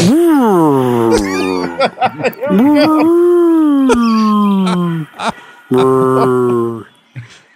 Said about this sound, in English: And that was 20 minutes of whale songs, but Tony edited it down to 3 minutes.